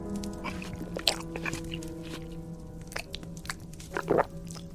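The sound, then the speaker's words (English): Wet chewing of rare steak, with irregular soft smacks and crunchy bites over a low steady hum, a few louder bites standing out near the start and end. “You aren't just eating steak.”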